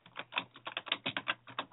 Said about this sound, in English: Furious typing.